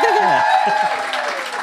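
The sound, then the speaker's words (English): An audience claps again for an arriving guest in a dense, steady burst, with cheering voices rising over the applause at the start before it settles into a continuous patter. “Clap again. Clap again!”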